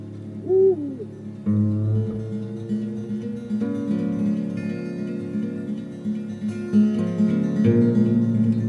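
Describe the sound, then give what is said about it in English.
An owl hoots once near the start, a short wavering call, followed by steady layered droning tones that continue to the end. No one speaks. “When you're out camping, like, there's just always, like, twig snaps and, like owls hooting or whatever outside, and it takes a while to get used to.”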